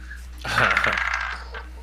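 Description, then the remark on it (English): Dice rolled for a performance check in a tabletop role-playing game clatter and tumble across a hard tabletop for under a second, a quick burst of rattling clicks that settles into quiet, with no voices. “Let's find a dice that hasn't screwed me over today.”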